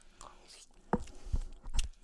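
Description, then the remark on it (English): Soft chewing of mushy food infused with coconut vodka: three or four squishy mouth sounds at an unhurried pace, quiet and moist, with no clear speech. “Well, you don't have to chew that much because it's so soft.”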